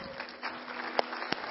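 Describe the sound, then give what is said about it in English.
A crowd applauds steadily, a dense wash of clapping with a few sharper individual claps standing out near the end, moderate in volume, with no one talking. “I applaud you, men.”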